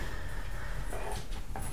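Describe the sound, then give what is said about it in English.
A dog tugs and tussles with a person over socks, with steady scuffling and a couple of brief growly, whiny bursts near the end, fairly quiet, with no one talking. “fighting with the dog. Over my socks.”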